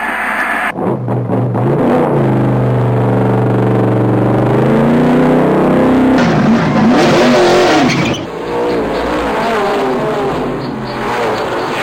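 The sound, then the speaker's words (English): A race car engine fires up and revs hard, its pitch climbing and dropping through several loud throttle bursts before settling into a rough idle. “Start your engine.”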